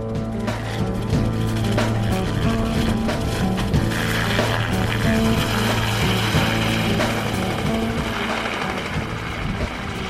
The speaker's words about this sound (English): I heard the bright yellow helicopter long before it appeared from the horizon. As the helicopter landed, the churning blades sent snow flying from the frozen landing pad.